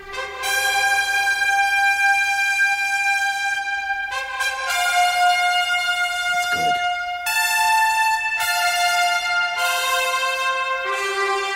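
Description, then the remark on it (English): A loud, brassy Channel 7 TV football broadcast theme plays on its own: bold sustained horn chords shifting every second or two in a triumphant fanfare, punctuated by short stabs, with no talking. “But this is the Channel 7 version. For Aussie kids, it gives you tingles.”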